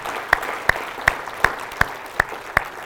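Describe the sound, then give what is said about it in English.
Audience applause over a steady wash of crowd noise, with sharp claps standing out at an even, rhythmic beat, about seven in three seconds, like someone clapping in time. “But let's give them another round of applause.”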